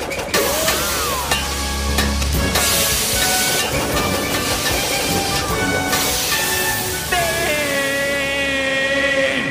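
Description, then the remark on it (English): Steady, loud steam hissing from a school's heating valves, with bursts that swell and cut off, layered with whistling, pipe-like tones and low rumbling underneath. No voices. “All right, full of hot air, much like those valves.”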